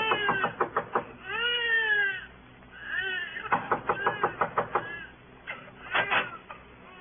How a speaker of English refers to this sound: Then you knock on a door that opens into a room where Tommy Mannon was born.